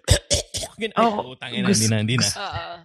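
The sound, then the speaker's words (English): Three quick coughs in a row, followed by a longer stretch of strained, voiced vocalizing, as if someone is hacking and groaning on purpose. “All you have to do is start coughing and the fucker is scared now.”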